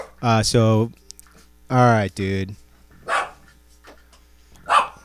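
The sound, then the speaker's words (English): Pet dogs bark excitedly: two quick pairs of loud, high yappy barks, followed by a few fainter, breathier barks spaced out toward the end. “Jesus dogs, my pups are going crazy over here.”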